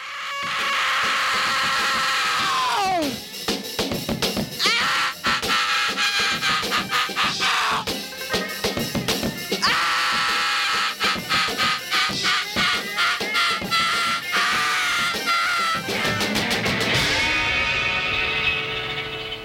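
A raw, hoarse voice screams and wails over loud, distorted rock music with crashing drums, pitch swooping down early on, and the noisy racket carrying on without a break.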